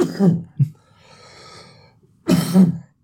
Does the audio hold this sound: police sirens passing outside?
no